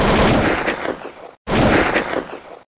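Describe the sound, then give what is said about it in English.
A sharp gunshot and then a booming explosion, both loud, each crack trailing into a rough rumbling decay, separated by a brief gap of silence, with no voices present. “A gunshot. Then an explosion.”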